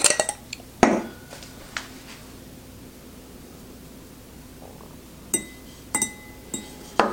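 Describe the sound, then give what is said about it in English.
Ice cubes, just taken out of a lidded container, clink sharply against a hard surface, a cluster of bright knocks at the start, then a quiet pause before several more scattered clinks toward the end, over faint background hiss. “That came out really easily. Usually that's not the case. All right, so let's check this ice cube out.”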